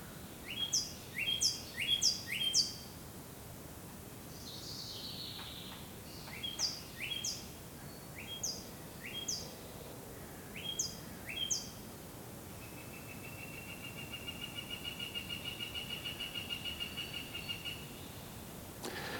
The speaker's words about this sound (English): I'll leave it up to you to figure out what those birds were talking about, but it's nice to just sit back for a moment and listen to the birds.